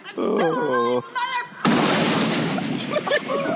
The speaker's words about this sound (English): And you felt that impact too. That was an explosion. Yeah. Good Lord. I'm good thing it didn't blow up part of the house.